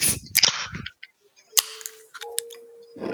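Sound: beer can being opened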